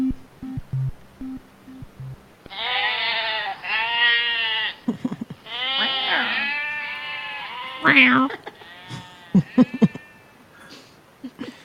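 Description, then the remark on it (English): Several goats bleat loudly in long, wavering, nasal cries, one after another, with a few shorter calls and clicks trailing off near the end. “Yeah, I couldn't think of anything to say about the goats at the end there.”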